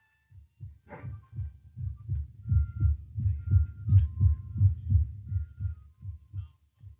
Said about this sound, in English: I can't tell whether he's breathing or not. The old man's so skinny, so sick. Hear if his heart beats.